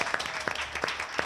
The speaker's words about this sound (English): Okay, so we're here at the study, the beautiful study. We'll just do another little applause. Their 10th anniversary.